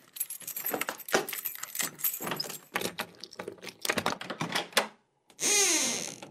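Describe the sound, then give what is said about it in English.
Keys jangle and metal clicks rattle for several seconds, like a lock being worked, then after a brief pause a door swings open with a drawn-out creak. “We are going through this door now.”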